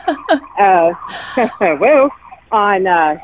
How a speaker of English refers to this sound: Sorry about a siren going by.